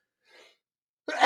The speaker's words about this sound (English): Got a little sneeze in there.